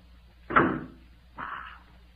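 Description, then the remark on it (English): A door being closed: a heavy thud followed about a second later by a shorter scraping bump as it shuts, with no voices. “Wait till I close this door.”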